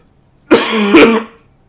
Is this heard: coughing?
yes